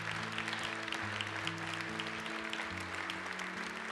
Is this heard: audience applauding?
yes